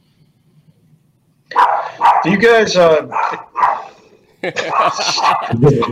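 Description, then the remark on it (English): A female dog barks several times at workers fixing the yard, in quick, sharp bursts, fairly loud, overlapping with a person talking. “She's barking at the guys fixing the yard.”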